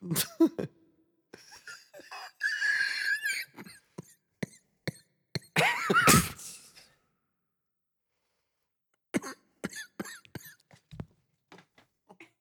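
Several sharp coughing bursts with throaty, breathy sounds and a short gasp, in irregular clusters, then a pause before a final run of quick, clicky bursts. No words are spoken.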